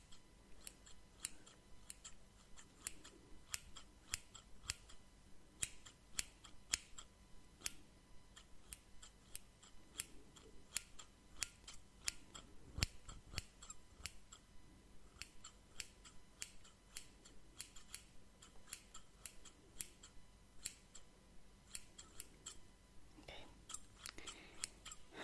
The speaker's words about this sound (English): Is it fine if I just cut around the cloth? Because otherwise I won't be able to, you know, take care of it. Okay, so just stand still, because I'm good with weapons, but I'm not that great with scissors.